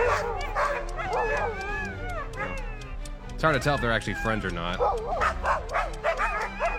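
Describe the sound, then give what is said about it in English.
A chorus of dogs, celebrating, barks and yips over one another in rapid, overlapping bursts, loud, while a person talks through the commotion. “Now, it sounds like the Alpha Dog has a few more friends.”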